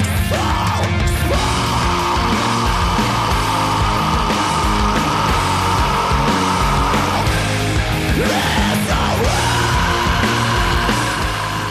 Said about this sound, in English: And I also really don't care for the way his screaming sounds in this one. Oh my God, that scream at the end too. Here it is.